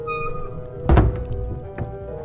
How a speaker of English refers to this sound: Shut the door, Nuzwik.